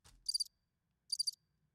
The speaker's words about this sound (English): It's crickets.